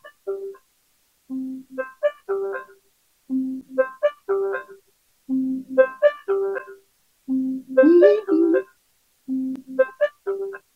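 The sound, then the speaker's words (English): A repeating electronic ringtone melody from the Be My Eyes phone app, searching for a volunteer, plays in regular phrases, bright tonal notes rising and falling with brief pauses between each cycle, heard alone without any talking. “And you can hear that. That means it's searching for a volunteer.”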